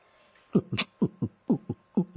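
A fast fetal heartbeat at 14 weeks as heard through an ultrasound monitor, rapid paired whooshing thumps in a steady rhythm, fairly loud, with no voices over it.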